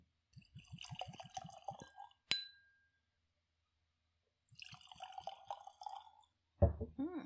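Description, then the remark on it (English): Whiskey, 111 proof, glugs and splashes into a glass in two separate pours, with a sharp glass clink after the first pour and a quiet pause before the second. “Let's pour some whiskey.”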